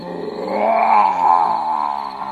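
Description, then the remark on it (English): A lion roars once, a loud, sustained growling bellow that swells in the middle and holds for about two seconds, with no talking over it. “He roared so loudly that all the animals nearby ran away to hide.”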